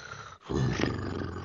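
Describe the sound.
A voice imitates a loud, amplified snoring purr of someone sleeping soundly on a sofa: after a brief pause, a throaty rumble starts and vibrates steadily for about a second, rough and growl-like.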